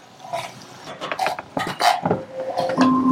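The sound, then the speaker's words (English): An Alexa timer alarm begins sounding partway through, steady electronic tones holding at a fixed pitch and shifting to a higher note, over earlier clattering kitchen noises from cooking. “Timer. Alexa, timer off.”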